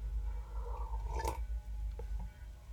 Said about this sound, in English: In 1 second here, as I have a sip of this delicious beverage.